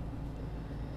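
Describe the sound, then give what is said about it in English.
A steady, low road rumble from a car moving in traffic fills the second, a constant droning hum with no voices and no distinct individual events. “Okay, now we're hitting a little bit more traffic, y'all.”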